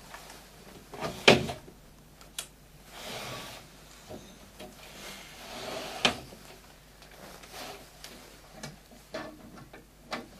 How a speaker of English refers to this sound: You can open the door, sorry, should you open the door?